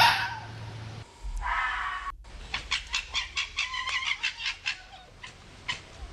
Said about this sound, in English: That's a fox.